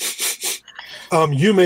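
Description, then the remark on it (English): Three quick, evenly spaced, fairly loud sniffs, followed after a short pause by a person's voice. “I don't know if I'd shout it out initially, but you might see me sniffing.”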